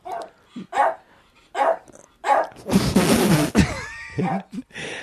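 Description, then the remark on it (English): A dog barks repeatedly, a run of sharp, fairly loud barks with a longer, harsher burst in the middle and a few higher yips toward the end. “My dog is very disturbed by Queen Elizabeth.”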